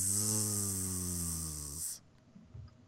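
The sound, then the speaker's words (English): A person imitates snoring with one long, loud, rasping drawn-out snore that lasts under two seconds, then cuts off into quiet background noise. “I wrote snore.”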